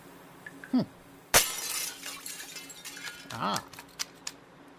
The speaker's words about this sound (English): What does this say? In case of emergency, break glass.